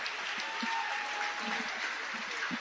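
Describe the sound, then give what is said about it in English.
A crowd at a girls' basketball game stands and applauds as plaques are handed to the players, a steady, dense wash of clapping that holds at an even level throughout, with a few faint scattered voices mixed into the ovation. “Nice ovation from the crowd, standing and applauding.”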